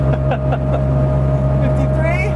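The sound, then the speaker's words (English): A classic Fiat 500's engine drones steadily as it drives downhill at about 51 to 54 miles an hour, a loud, constant low hum with a higher whine riding on top, and a voice briefly murmuring underneath. “Is that just the gas that's burning, or is that? It's just the engine.”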